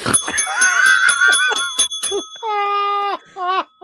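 A bell clangs in a fast flurry of repeated strikes, then gives two longer, sustained rings with bright, layered overtones, loud and on its own.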